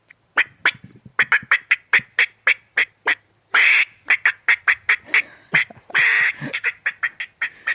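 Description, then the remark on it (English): A person imitates a squirrel's bark with their voice, a loud string of quick, sharp barks in a steady rhythm, broken twice by longer raspy squalls. “Show me your squirrel bark.”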